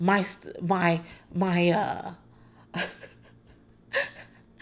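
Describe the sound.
A person gasps loudly and breathes heavily: several strained, voiced gasps in quick succession, then two sharp, airy breaths separated by short pauses.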